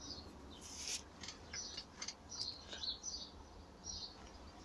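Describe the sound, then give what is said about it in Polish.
Various small birds chirp and call at dawn, with owls also hooting, in quick, scattered bursts against a soft, hissy outdoor background. The calls are high-pitched and faint, and no one is talking. “Proszę posłuchać, jakie ptaszki rozmaite i sówki różne tutaj hukają. Nad ranem.”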